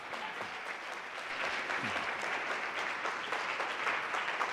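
A crowd claps steadily in welcome, dense overlapping applause that stays fairly loud and even for several seconds with no voices.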